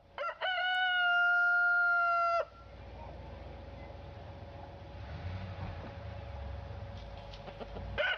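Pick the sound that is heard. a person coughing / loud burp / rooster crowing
rooster crowing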